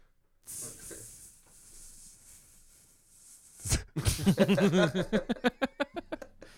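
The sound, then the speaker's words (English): A person imitates a snake, doing Zach Galifianakis' impression of a gay snake, with a long, steady hiss lasting a few seconds, then louder voiced, rhythmic hissy bursts. “Did you ever hear Zach Galifianakis' impression of a gay snake?”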